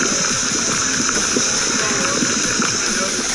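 Red-hot molten lava bubbles and hisses against ice, a loud, steady roar of gurgling and sputtering with dense crackles and pops running throughout, continuous.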